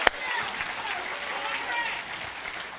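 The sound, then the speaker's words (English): An audience claps its hands for the Lord in a dense, steady wash of applause that holds at an even loudness for about three seconds, opening with one sharp crack. “Come on, give the Lord a hand clap here.”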